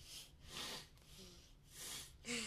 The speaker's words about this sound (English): Sniffle?